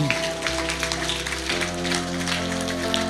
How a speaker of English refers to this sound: Would you give them a hand clap?